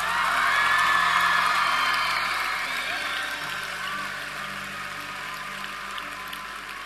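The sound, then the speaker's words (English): An audience and worship team clap and cheer in a dense, steady wash of applause with scattered whoops, loudest at first and gradually easing off while staying sustained. “Worship team, clap louder, because that's worth clapping over.”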